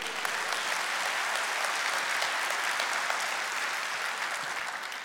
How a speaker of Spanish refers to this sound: Date un aplauso.